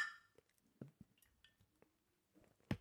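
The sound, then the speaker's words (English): Beer glasses, one holding Heineken and one Blue Moon, clink together in a toast: soft knocks and taps lead up to one sharp, bright clink right at the end, with no talking. “I have to say, I think we clink exceptionally well.”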